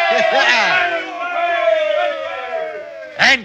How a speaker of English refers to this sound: Yes, we're saved. We're saved. Give a cheer, lads. We're saved.